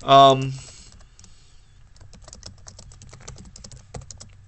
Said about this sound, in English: Sorry, I'm still typing. I should have like someone help me type all these things so I don't have to worry about doing all this stuff myself.